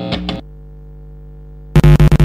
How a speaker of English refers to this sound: Wow. Sounds like plugging in an amp. Yeah. I like it. Yeah, it's just the light flickers with that noise.